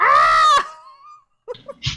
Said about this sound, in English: Yeah, so we don't really have any ARK options for that. Just a death scream.